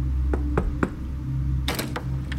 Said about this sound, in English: However, that afternoon, Elena knocked on our door.